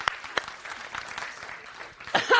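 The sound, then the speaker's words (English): Scattered, polite golf claps from a small audience, a handful of separate hand claps spread unevenly over a couple of seconds, moderately quiet with a faint murmur beneath. “And the golf claps.”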